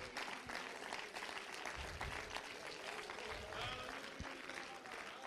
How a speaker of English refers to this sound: Why don't you go ahead and give him a hand clap of praise? Why don't somebody worship him?